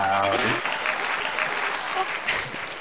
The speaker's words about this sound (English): Audience clapping.